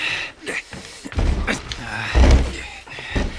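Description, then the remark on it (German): The barricaded door of a former slaughterhouse is shoved and rattled, giving two heavy, dull thuds about a second apart, with soft scuffing and breathy noise between them. “Die Tür ist zu. Verschlossen? Nein, verrammelt.”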